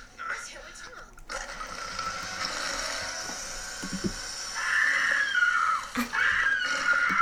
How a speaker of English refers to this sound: Okay, so that's Buffy's scream. Like, looking back, that does not sound like it's coming from her mouth.